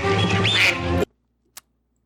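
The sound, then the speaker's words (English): A single loud, nasal duck quack sound effect, buzzy and drawn out for about a second, cuts off sharply into silence broken only by a brief faint click. “Duckies. Yep. There they are.”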